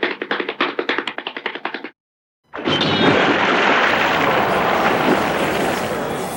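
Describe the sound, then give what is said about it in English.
A sound effect from the Maynard International Studios library: a quick run of rapid tapping, then a brief silence before a loud, sustained rushing wash of sound as a person splashes into a paddle pool, holding steady for several seconds. “I would like to hear Sophie Mirabella launching herself into a paddle pool.”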